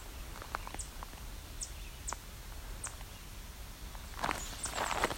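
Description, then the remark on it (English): Thin, high chip notes from two chipping sparrows sound a few times at uneven intervals, fairly faint against a soft outdoor hush, followed by a denser flurry of bright chirps near the end. “You can hear two chipping sparrows now.”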